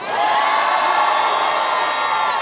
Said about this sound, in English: The crowds, listen to the crowd's reaction there.